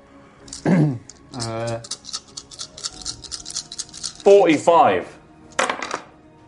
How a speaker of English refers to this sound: Forty-five. I don't know how many dice he's just rolled. I rolled a lot of sixes. Oh. Approximately 45 of them.